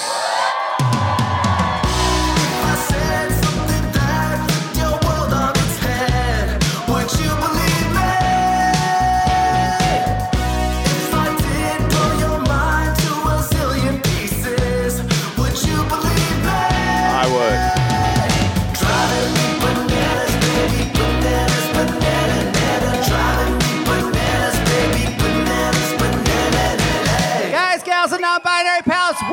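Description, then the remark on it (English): A live audience at the first annual Splitty in the City event at the Virgil cheers, whoops and yells loudly and without pause for about half a minute over a steady rhythmic beat, then cuts off abruptly at the end. “Hot crowd. Hell hot yeah. Crowd.”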